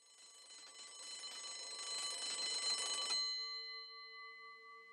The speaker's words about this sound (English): The school bell rang, signaling that class was over.